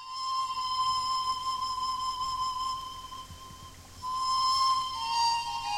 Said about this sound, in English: That sounds to me like a flute from the highlands of Peru. Well, of course, you're right. And I have managed to dig out a recording of our trip to Vilcabamba in Peru.